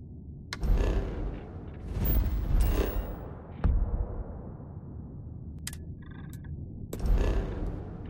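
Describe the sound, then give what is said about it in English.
Sharp sci-fi star map interface clicks, built from hard drive sounds, land every second or two over a steady low bass background rumble, with a short cluster of high electronic beeps chirping in the middle; no voices. “the hard drive sounds are still in there, but there's just the kind of bass, there's some baseline like background noise added, and the way that like the clicks and the beeps feel, it feels much more like you're interacting with a refined star map.”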